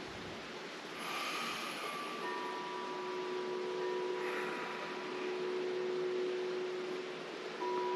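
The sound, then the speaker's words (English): Wind chimes ring softly, a couple of gentle strikes leaving long, sustained metallic tones that hang and fade over a steady breathy hiss of wind. No one speaks. “You can hear the wind chimes, which were a gift from one of my best friends many, many years ago.”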